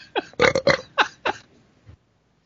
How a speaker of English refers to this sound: It was a burp. Now my stomach is like huge and bloated.